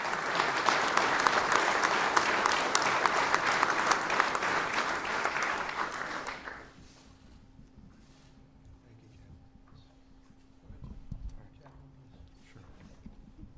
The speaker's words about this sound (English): President Trump among those applauding David Bellavia.